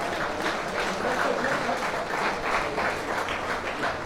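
Sustained applause from a large crowd at a hurling final presentation, many hands clapping densely and evenly at a steady loud level throughout, with no voices standing out, given for the Pairc Seán Committee for the condition of the pitch.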